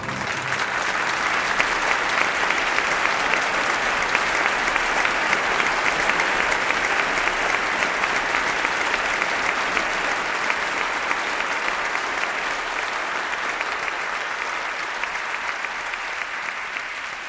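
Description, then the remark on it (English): Sustained applause from a large audience, a dense, steady wash of many hands clapping at once that holds for the whole stretch without a break, easing only slightly toward the end. “We'll clap for an hour. We'll not stop until we fall.”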